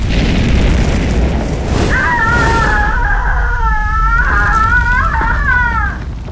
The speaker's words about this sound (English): It was like time slowed down. A fireball the size of a carriage engulfed her.